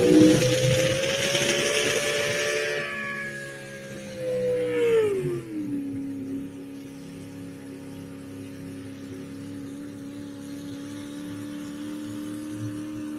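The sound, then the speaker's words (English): A heavy pulling-truck engine hauling a sled at a truck pull in Mound City roars loudly, then bogs down coming out of the hole, its pitch sagging and dropping into a lower, steady drone of about 5,000 RPM that never revs back up. No voices. “You heard the truck never come to life. He come out of the hole on it.”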